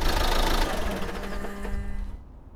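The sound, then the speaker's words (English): A car engine runs on an abandoned mine road outside Boulder, Colorado, with a steady rumble and a faint humming tone, then cuts off abruptly near the end, leaving quiet. No one speaks. “Rather than risk attracting the mountain trolls with our car, we decided to embark on foot.”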